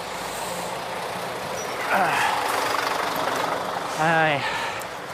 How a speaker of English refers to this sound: Here's a skip lorry trying to do a 3-point turn in front of me onto the pavement.